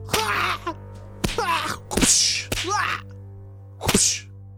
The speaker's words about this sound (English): Then you hear chains wriggle again, and you hear whip sounds followed by a shrieking caw.